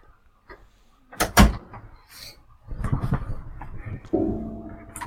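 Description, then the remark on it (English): A door bangs open with a pair of sharp thuds as a cat barges through it, followed by shuffling and rattling as it is pushed closed, ending in a brief creaking squeal. “And okay, I don't know how this cat barged through this door.”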